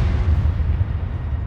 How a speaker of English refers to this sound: All Wayne remembered was the entire world violently lurching to one side and his seatbelt suddenly digging painfully into his chest and stomach. The world outside the car roared, screeched, cracked, and then was silent.